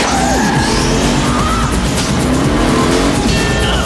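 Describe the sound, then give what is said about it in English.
The Gadget Mobile car from the Disney film Inspector Gadget drives off, its engine roaring loudly while tires squeal in sharp, wavering screeches, the vehicle peeling away with continuous revving and skidding noise throughout. “You bought me a car? Just say, go, go, Gadget Mobile.”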